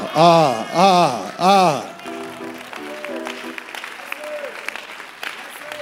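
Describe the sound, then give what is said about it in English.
An audience claps in a loose, scattered patter with crowd murmur and faint tones underneath, following three loud, rising-and-falling voiced cries at the start. “I'm waiting for you to clap better and I'll continue preaching.”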